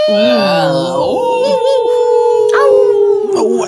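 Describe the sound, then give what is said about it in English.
Sustained, wavering howls ring out loud, one long tone sliding slowly downward while other voices rise and fall around it in a layered wolf chorus. “Those are wolves in the background.”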